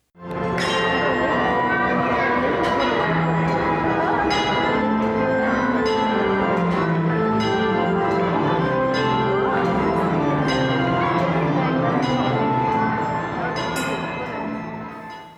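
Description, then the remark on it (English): Bells chime steadily in the main hall of the National Museum of Scotland at exactly 4 o'clock in the afternoon for about fifteen seconds, with repeated bright strikes ringing out over layered, sustained tones while a murmur of voices carries faintly underneath. “that was the sound from inside the main hall of the National Museum of Scotland at exactly 4 o'clock in the afternoon.”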